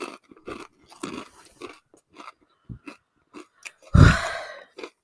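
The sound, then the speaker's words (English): Loud, crackly crunching of chips being chewed, a series of irregular bites and chomps with brief pauses between, ending in one especially loud, sharp crunch. “There's 40 total chips being eaten.”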